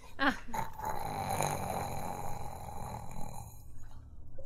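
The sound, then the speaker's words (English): A large, sleeping creature snores with a deep, rumbling, growly drone that holds steady for several seconds, loud, with no one speaking over it. “I think it's sleeping. Is that a snore? Sounds like it.”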